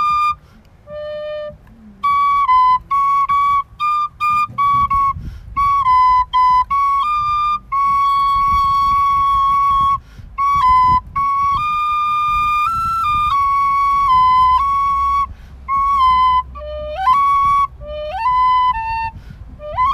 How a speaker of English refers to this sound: Pauly Shores on the penny whistle.